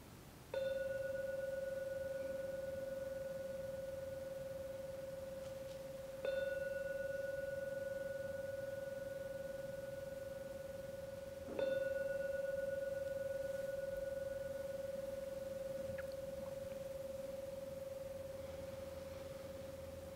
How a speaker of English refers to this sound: And just holding those good merits, those good, kind wishes with you as I begin to sound the bell.